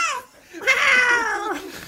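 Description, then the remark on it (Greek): A cat meows twice: a short falling mew, then after a brief pause a longer, drawn-out meow that sags in pitch at the end. No one speaks. “Ρε φίλε, γιατί όλα έχουν μια γάτα μέσα. Όλα έχουν μια γάτα.”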